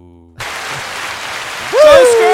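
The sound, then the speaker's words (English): A crowd cheering sound effect: a steady wash of applause-like noise swells up, then loud rising whoops and shouts break out on top near the end, after a brief low hum at the start. “That's the crowd for scare.”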